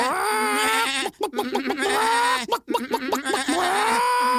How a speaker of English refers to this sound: And the goat was bleating.